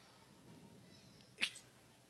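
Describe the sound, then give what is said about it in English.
A baseball game commentator with allergies lets out a single sharp sneeze about two-thirds of the way through, brief, over an otherwise quiet, faint background hiss. “Sorry, allergies are kicking up. God bless you.”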